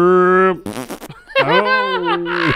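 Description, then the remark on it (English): A person vocally imitates a dog's drawn-out howl, then blurts a short, buzzy fart noise, then launches into another long, wavering howl, all loud and close. “find the hound dog farting on TikTok”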